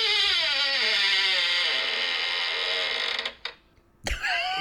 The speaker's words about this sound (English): You got to put some oil on that door. Put some Earl on that door.